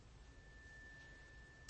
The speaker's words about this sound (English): I let this second chime sweep it away from you. Let it just go off into the air.